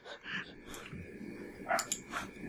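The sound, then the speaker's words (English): A dog barks at a person several times in short, irregular bursts, faint, over a low background hum with no one speaking. “Oh, so that's what the dog is barking at.”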